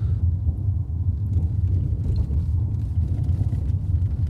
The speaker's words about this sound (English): I'm letting you lot listen to the car whilst I yawn.